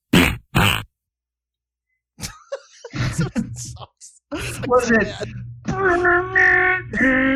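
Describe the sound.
Fart sound effects named Jurassic Fart: two short, loud sputtering bursts, a pause, then a longer run of low rumbling sputters mixed with groaning, moaning voice-like noises that rise and fall in pitch.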